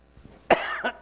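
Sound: coughing and throat clearing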